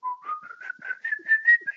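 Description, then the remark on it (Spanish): A person whistles a steady, gradually rising tune in a series of short connected notes, clear with no talking, imitating the eerie, recognizable whistle of a legendary wandering ghost. “Entonces él tiene un silbido que es muy reconocible, que era, todavía recuerdo que es.”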